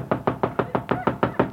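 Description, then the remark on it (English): A rapid, steady run of about nine knocks on a door, evenly spaced and fairly loud, with no voices. “Will you answer the door?”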